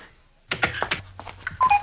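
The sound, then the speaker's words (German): An answering machine blinking beside a telephone, holding one new message, gives playback beeps and button tones: a quick series of short bright chirps and clicks over a low steady hum, ending with a couple of pure tonal beeps. “Das ist Ihr Anrufbeantworter. So was gibt's noch? Da ist eine neue Nachricht drauf.”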